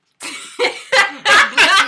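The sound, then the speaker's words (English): A quick series of about five sneezes, each a sharp, breathy burst, growing louder and harsher toward the end, with no talking. “Bless me, y'all. Bless you, babe.”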